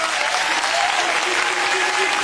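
A crowd applauds loudly and steadily, a dense wash of clapping with faint cheers and whoops rising through it, sustained without pause from start to finish.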